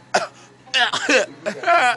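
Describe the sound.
A person coughs and clears their throat: a short sharp hack, then two longer, rasping, voiced bursts in quick succession, fairly loud.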